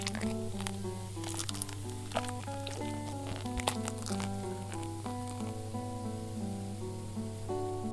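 Liquid is poured steadily into a pot over pears, with crackly splashing and sizzling for several seconds above a constant low hum and faint tonal background.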